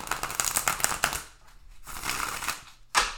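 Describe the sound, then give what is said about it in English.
Tarot cards being shuffled: rapid papery flutters and riffles in two dense bursts with a brief pause between, ending in a sharp snap, with no talking. “So I'm going to shuffle these cards real quick right here.”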